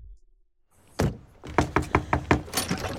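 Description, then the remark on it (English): A single dull thud, then a quick, steady run of about six firm knocks on the front door of Dr. Saperstein's house early in the morning, fairly loud, with no voices. “Saperstein, where we see Anne and Chris pull up, get out of their car, and knock on the front door.”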